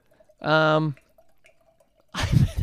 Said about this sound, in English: As Addie pours a giant glass of wine.